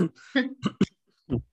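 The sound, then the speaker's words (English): A person coughs in a quick series of short, raspy bursts, with a brief pause before one last cough. “Sorry, was just coughing.”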